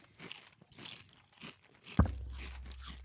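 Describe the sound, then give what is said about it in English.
Crunching on very crispy little fried tapioca balls, with loud crackly chews repeating about twice a second, then a sudden thump followed by a low rumble under the last few chews. “It does taste a lot like a crunchy chicken skin, doesn't it?”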